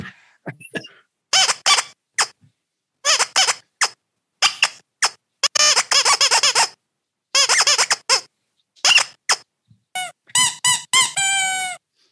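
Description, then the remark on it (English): Squeaky toys being squeezed over and over, a series of loud, high-pitched squeaks in irregular bursts, some short and sharp, others drawn out and wheezing, with brief pauses between. “So I have various squeaky toys.”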